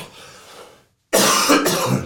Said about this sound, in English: Massive apologies, listeners and viewers. I could not stop that tickly cough.